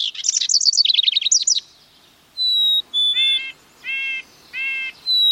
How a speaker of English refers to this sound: We're hearing a house wren, a black-capped chickadee, and red-breasted nuthatch. One of these birds might make its home in your yard if you put up the right kind of birdhouse.